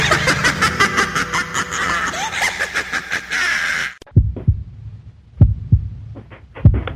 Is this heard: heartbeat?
yes